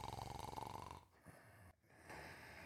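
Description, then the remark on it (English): A raspy, rhythmic snore rumbles for about a second, then gives way to breathy snuffling and sniffing sounds from inside a huge dressing-up box, fairly quiet, with no talking. “She heard snuffling and snoring.”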